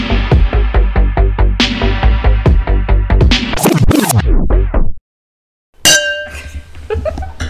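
After a stretch of music-like tones and a short silence, drinking glasses clink together once with a bright chime that keeps ringing for a couple of seconds.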